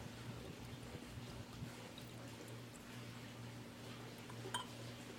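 A heavy pour of 80-proof (40% ABV) whiskey, aged 3 to 5 years, into a glass: a steady trickling, soft continuous liquid stream over a low steady hum, with a small clink near the end and no one speaking.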